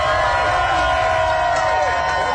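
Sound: crowd applause and cheering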